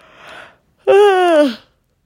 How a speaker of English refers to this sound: Another yawn.